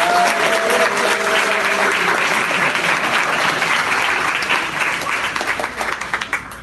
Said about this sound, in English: A very raucous crowd.